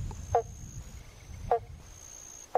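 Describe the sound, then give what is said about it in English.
Three short, plucked-sounding 'bonk' calls of a banjo frog, also known as the pobble bonk, spaced about a second apart, standing out clearly over a low, rumbling outdoor background with a faint steady high whine. “The banjo, oh, this is not a bird, this is a frog. The banjo frog, also known as the pobble bonk.”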